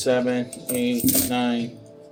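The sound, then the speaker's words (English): Game coins dropped one after another in quick succession while being counted, eleven in all, producing a run of bright metallic clinks while a person talks steadily over them. “6, 7, 8, 9, 10, 11. I ended with 11 coins.”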